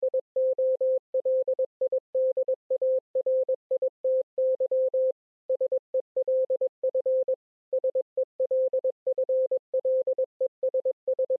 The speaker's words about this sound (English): And three of the later themes are actually there in the form of Morse code. So not in lyrics, but they are in Morse code, hidden away in the song.